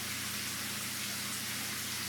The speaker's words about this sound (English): I step into the shower, and before I know it, it's been a half hour, and time that could be spent with them has melted away under the water.